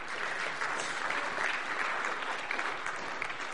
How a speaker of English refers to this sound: If you could give a round of applause for him.